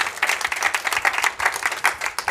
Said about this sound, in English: Now, if you're thankful for that, just give him a hand clap of praise right there.